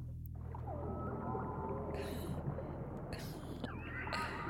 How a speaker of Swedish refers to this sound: Vi lyssnar på valmusik. Ja, men det är det. Så helt plötsligt så ser jag, och då tänker jag så här, hur du och jag bara försvinner i ett välgörande bubbla när vi hör det här.